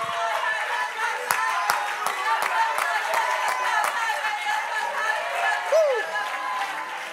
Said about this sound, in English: Come on, clap your hands unto the Lord and magnify him.